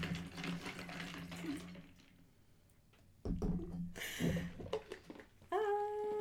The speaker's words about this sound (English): Pause for intermission. Pour that wine.